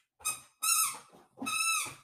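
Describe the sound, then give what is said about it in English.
Oban's squeaky ball toy squeaks three times in quick succession, shrill and tonal, with the second and third squeezes longer than the first. No one speaks. “And that's Oban in the background with his squeaky ball.”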